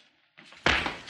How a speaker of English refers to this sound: John Wayne kicked him.